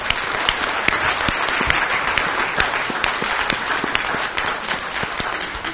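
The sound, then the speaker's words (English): A conference audience applauds its panelists steadily, a dense wash of many hands clapping with sharper individual claps popping out, sustained at an even, fairly loud level throughout. “Okay, let's give our panelists another round of applause.”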